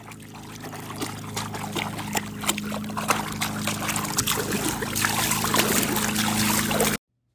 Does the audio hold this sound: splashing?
yes